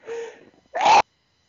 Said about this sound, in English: Okay, I have to sneeze. Sorry.